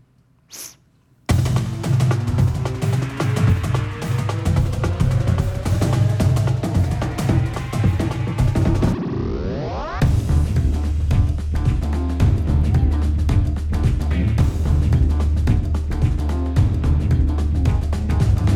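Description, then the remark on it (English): The audio logo of a new series: a loud, dense electronic music sting plays with no voices, building to a rising whoosh-like sweep before the heavy beat drops back in and drives on to the end. “Turn down the lights, just the pickup on the new series audio logo.”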